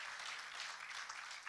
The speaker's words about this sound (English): I think we ought to give God a hand clap of praise. Thank you, Jesus.